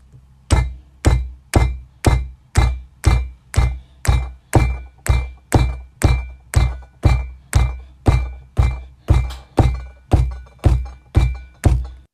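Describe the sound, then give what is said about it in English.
Hands bang steadily on a tabletop as improvised percussion, a rhythmic run of about two dozen loud thumps with a bright knock on each hit, spaced roughly evenly with no talking. “So it was just me like banging on the table.”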